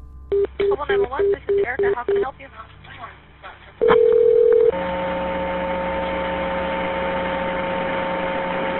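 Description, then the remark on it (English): A rapid run of phone keypad tones and a brief beep give way to a steady, hissing wash of telephone-line static with a faint hum, continuing unbroken for several seconds, on a recorded emergency call to police placed from the Imperial Memorial Gardens, a funeral home and cemetery. “The police mainly heard static. Here is the call.”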